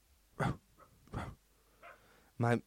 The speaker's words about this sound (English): My housemate got a new dog. His name's Trigger. He cute as hell. And he out there barking.